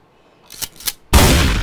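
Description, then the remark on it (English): A gunshot sound effect, played on cue: two quick rising whooshes, then a sudden loud blast that keeps roaring with harsh noise until the end. No one speaks. “Hit the gunshot.”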